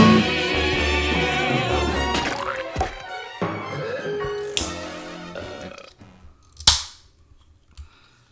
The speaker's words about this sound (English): The fizz was good. Oh, getting that fizz on this Coke with no sugar. Low on sugar so I can slam it down fast. High on fizz, apparently.